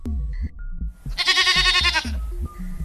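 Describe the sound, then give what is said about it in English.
A mountain goat lets out one loud, wavering bleat lasting about a second, nasal and quavering, with other farm-animal noises and rustling around it. “So that's the mountain goats for you.”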